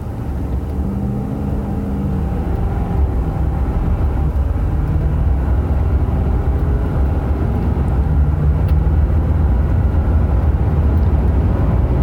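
A diesel pickup truck engine accelerating at wide-open throttle on a test drive, reaching about 96 miles an hour, its loud, steady rumble filling the whole stretch while faint engine tones climb gradually in pitch, with no talking.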